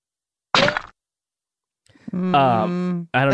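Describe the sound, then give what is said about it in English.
A video game bullet ricochet effect: one short, sharp, loud burst, then after a pause a longer voiced sound with a gliding pitch, like a vocal rendering of the effect. “I've heard this one might be the one for a bullet passing through somebody.”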